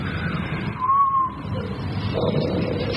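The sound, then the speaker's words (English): A voice imitates wind blowing as a sound effect while telling a story, with a steady breathy whoosh and a brief thin whistle rising and falling over it, lasting about three seconds. “The wind is blowing.”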